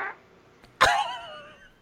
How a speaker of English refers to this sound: That was a real fart, by the way.